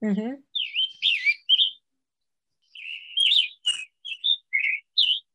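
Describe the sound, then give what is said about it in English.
A Scarlet Tanager sings a series of short, hoarse, burry whistled phrases in two bursts separated by a pause, clear, after a brief voice at the very start. “So I bet you're interested in what this bird sounds like.”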